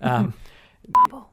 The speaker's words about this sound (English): What I will actually do is censor that out when I edit it. There'll be a beep over it.